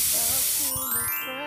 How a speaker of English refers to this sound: Good thing I brought my trusty Tears Be Gone. Just spray this directly into your eyes and...